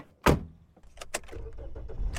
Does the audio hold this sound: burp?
no